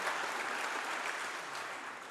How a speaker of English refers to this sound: by letting it be known by saying amen and applause.